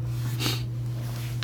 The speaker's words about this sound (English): I do sniffle, though.